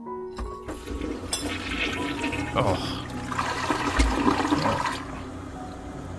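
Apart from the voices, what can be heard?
toilet flushing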